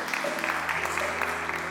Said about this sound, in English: Well, come on and give God a hand clap of praise.